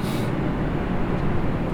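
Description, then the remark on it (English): A loud, steady low rumbling roar of an airplane passing overhead outside an open window, holding an even level throughout with a brief hiss at the start and no voices. “I heard the most, like, strange banging outside of... It sounded like... All right, plane.”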